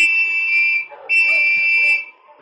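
Two long, steady blasts on a whistle blown at an open back window, each close to a second, shrill and high-pitched with a brief gap between them, sounding alone with no voices.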